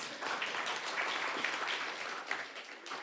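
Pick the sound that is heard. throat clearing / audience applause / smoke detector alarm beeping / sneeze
audience applause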